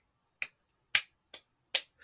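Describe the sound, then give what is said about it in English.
Four crisp, sharp slaps in a steady rhythm, roughly two per second, with a fifth just starting. A person imitates rhythmic slapping with snappy hand sounds, with no talking. “And all of a sudden, I start hearing a rhythmic slapping.”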